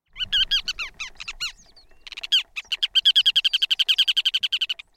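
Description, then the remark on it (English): Ruddy turnstone calls: a burst of sharp, rapid chattering notes, then a long, loud, evenly paced run of clipped twittering calls, clear with no voices. “You can find these calico-colored ruddy turnstones foraging for crustaceans across 6 continents in the winter.”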